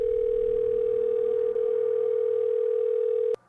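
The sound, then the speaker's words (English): A phone line tone hums steadily and unbroken for about three seconds, loud as if through a handset, during a call placed late at night, then cuts off abruptly with a click; nobody answers or speaks. “I got a bunch of missed calls from Jay. Fuck, man, pick up.”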